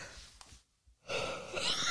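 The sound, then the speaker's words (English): A breathy yawn into the microphone: a soft airy exhale, a brief pause, then a long loud drawn-out breath with no talking. “She certainly doesn't judge you when you yawn into the microphone every time.”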